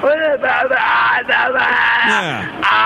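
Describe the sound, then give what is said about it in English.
A woman inside her apartment screams and yells unintelligible, gibberish-like words in loud, strained bursts with brief pauses, her voice rising and falling sharply. “Now, in this case, she's inside her apartment and you can hear her. I don't think the words she's screaming are in English.”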